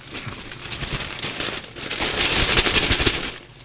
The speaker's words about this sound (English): Shuffle through that paper, why don't you